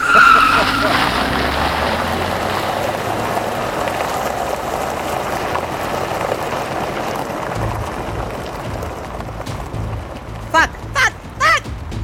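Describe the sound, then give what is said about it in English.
Loud, sustained tire screeching as a truck engine roars and the truck speeds off in reverse, with a harsh high squeal at the start and several short sharp bursts near the end. “fucking floors it in reverse.”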